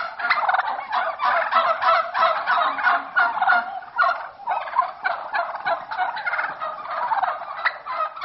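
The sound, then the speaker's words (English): A flock of turkeys gobbles loudly and continuously, overlapping rattling calls packed close together for the whole stretch, with no talking. “Looks like in that one the turkeys won out.”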